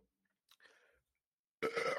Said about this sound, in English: Oh, God, sorry. That was the most awful-sounding burp ever. I'll edit that out.